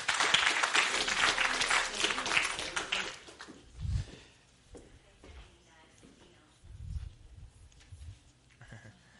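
A burst of crowd applause fills the first few seconds with dense, rapid clapping, then quickly fades away, leaving quieter room noise and scattered low thumps.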